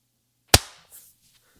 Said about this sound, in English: How about we clap at 10 seconds after? Okay. Yep. Sounds good.